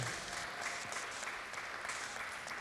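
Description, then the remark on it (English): A church audience claps together in sustained, dense applause, celebrating the church's 4-year anniversary, many hands producing a steady crackling wash that holds level for a few seconds with no voices standing out. “Today we're celebrating, and we can maybe clap for this.”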